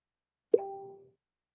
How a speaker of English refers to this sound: Right, and I heard a ding. I heard a ding.